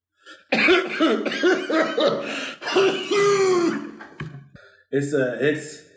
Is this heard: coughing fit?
yes